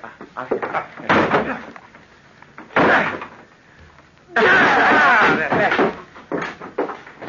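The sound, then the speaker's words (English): Heavy blows hit a locked wooden door several times, followed by a long splintering crash as it gives way. The loud impacts come in uneven bursts. “Open the door. It's locked. Then break it down.”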